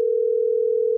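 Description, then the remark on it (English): A steady, continuous telephone dial tone hums at an even level for the whole second, alone with no talking over it, as a caller is being called back during a live show. “I'm calling Gadi back.”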